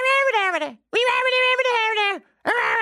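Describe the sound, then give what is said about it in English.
A single voice imitates two women screaming at each other outside a bedroom, producing long, wailing, pitch-bending cries in three loud bursts with brief silences between, the first sliding downward at its end. “I was woken up by two women screaming at each other outside my bedroom”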